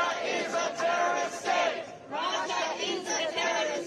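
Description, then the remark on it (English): A crowd of protesters chants in unison outside the Russian embassy in Washington, D.C., in solidarity with Ukraine on the one-year anniversary of Russia's invasion. Voices rise and fall in steady rhythmic bursts of shouting, loud and continuous throughout, with a brief dip before the next phrase. “Protesters joined in solidarity for Ukraine on the one-year anniversary of Russia's invasion.”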